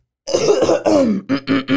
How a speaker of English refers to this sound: Actually, hang on. Let me clear my throat.